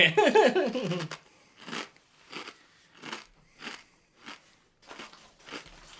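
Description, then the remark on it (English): Steady crunching of rippled potato chips, about seven crisp, brittle chews in an even rhythm, following a short loud voiced sound at the start. “He's really putting on his chip tasting face for this one.”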